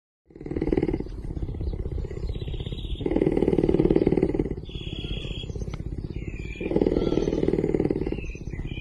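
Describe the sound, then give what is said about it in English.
A puma, also called a mountain lion or cougar, purrs in a deep, steady rumble that swells louder in long waves, about three strong surges over several seconds, continuous with no voices. “Yep, pumas are purrers.”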